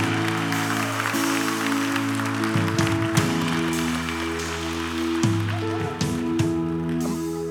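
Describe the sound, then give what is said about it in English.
An audience claps steadily in a dense, continuous wash of applause, while sustained keyboard chords hold underneath and shift a couple of times. “Come on, let's clap.”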